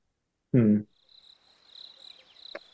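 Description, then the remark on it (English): A short vocal sound is cut off, then a steady, high-pitched cricket chirping sound effect fills a pause in conversation, a soft continuous trill lasting about two seconds on its own. “Now we have a pause. That's okay. Andrew will sometimes put crickets in there.”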